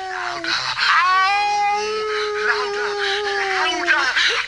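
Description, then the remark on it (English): A veterinarian howls like a dog in one long, loud, wavering cry that holds steady for several seconds. Its pitch slides gently up and down before trailing off. “So he's going to make the veterinarian be the howler.”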